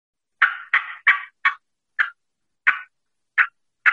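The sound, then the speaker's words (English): Eight sharp, clucking hen turkey cuts made with a mouth call, as in a fly down cackle, loud and alone, coming in a quick burst of four before spacing out into slower, uneven single notes. “And cutting means I'm going cuck, cuck, cuck with the mouth call.”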